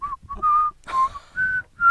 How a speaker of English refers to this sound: And I even started whistling happy birthday. Like I was going.